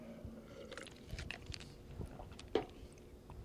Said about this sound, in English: Let me take a sip. Shout out to the free cup we got at the game and shit.